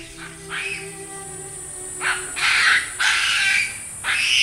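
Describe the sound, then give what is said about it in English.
Harsh, buzzy chattering from a colony of masked weaver birds at their hanging grass nests in the treetops of the Serengeti, with raspy bursts arriving in irregular clusters over a steady bed of fainter twittering calls, moderately loud. “A colony of masked weaver birds that have built an elaborate hanging city of grass nests in the treetops.”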